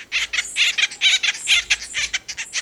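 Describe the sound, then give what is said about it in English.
Raucous, scratchy acorn woodpecker calls repeat in a rapid, chattering series, loud, with short harsh bursts tumbling one after another and no voices. “The cartoon Woody was an imp, but the acorn woodpecker is an industrious bird.”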